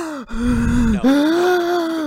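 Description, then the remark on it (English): A voice imitates trees in the woods breathing in unison with heavy, rasping breathing: two long, loud, drawn-out breaths, one in and one out, with a throaty, groaning edge and no words. “But now, all of the trees are breathing in unison.”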